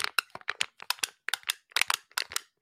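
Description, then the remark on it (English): An aluminum sparkling water can being crunched, a rapid series of sharp metallic crackles and crinkles in irregular bursts, fairly loud and with no voices. “I could record myself crunching that, put that into my computer, process the hell out of it, and create some weird sonic rhythmic thing.”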